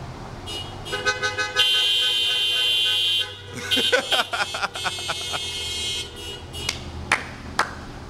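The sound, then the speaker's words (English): Several car horns honk together, a long sustained blast followed by a flurry of shorter overlapping toots and beeps, fairly loud, with a background murmur of voices. “Oh, I never knew that hearing horns honk could be so awe-inspiring and joy-filled.”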